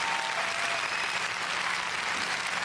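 Steady, dense clapping fills the whole stretch at an even loudness, like an applause track with many hands blending into a continuous patter.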